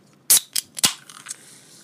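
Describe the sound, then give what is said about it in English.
A sharp metallic crack as a soda can's tab pops open, followed by a few quick clicks and a soft, steady fizzing hiss that lingers afterward. No one speaks. “I will open this can for you guys.”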